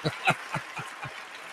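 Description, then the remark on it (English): A handful of hand claps in tribute to Robert Moses, about five sharp, evenly spaced smacks in a steady rhythm, fairly quiet and fading slightly toward the end, with no voices over them. “Man has a lot to applaud, get applause from here, you know?”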